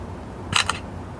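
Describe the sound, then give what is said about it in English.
A phone camera shutter clicks once as a picture is taken of a nail sticking in the end of a piece, a crisp two-part snap with a bright, high-pitched edge, heard alone over a low background hum with no talking. “Okay, there's a picture of the nail sticking in the end.”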